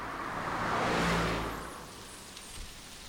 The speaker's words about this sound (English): The sound of silence. Cars pass by sporadically.